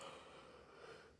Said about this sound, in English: Excuse me, sweetie. Yawning in your ear. Please excuse me. I wouldn't do that in front of you. Yawning in your face like that.